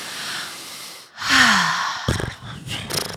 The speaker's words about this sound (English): Sometimes the best thing to do is a simple breathing exercise. Close your eyes and take 10 deep breaths.